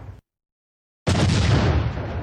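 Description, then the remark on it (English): After a short pause, a single loud cannon blast erupts, followed by a sustained, roaring rumble that slowly fades. “Didn't get laid tonight, but I got to shoot a bunch of cannons and pretend to be a boat captain.”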